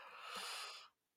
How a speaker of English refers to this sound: That was me yawning.